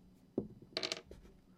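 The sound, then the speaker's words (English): Four six-sided dice tumble onto a table: a dull thump, then a quick clattering burst of hard clicks and a final small tap, fairly quiet, with no talking. “So how many dice do you roll? I roll 4d6.”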